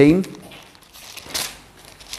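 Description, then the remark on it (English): A single sharp sneeze bursts out after a brief voiced sound, a breathy, hissy explosion that fades quickly into faint rustling. “Bless you.”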